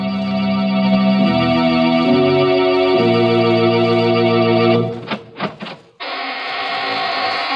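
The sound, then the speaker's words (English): A door creaks open with a long, loud, buzzy squeal that shifts pitch in steps, breaks into a few short stuttering creaks, then drones on again. No one speaks. “This is your host, opening the squeaking door for another session of the AGGMS, the Association of Ghouls, Ghosts, and Midnight Spirits.”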